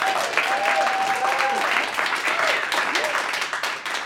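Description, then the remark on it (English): Steady applause from a studio audience after a live music performance fills the space, dense and sustained for several seconds, with a few faint cheers or whoops rising briefly above the clapping. “And thank you to our audience as well. One more round of applause.”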